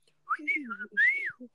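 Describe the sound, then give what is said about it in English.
A person whistles a two-part catcall, a rising note then a longer swooping one that arcs up and falls away, fairly loud, with some low vocal murmuring underneath. “Oh, dang, I messed up the whistle.”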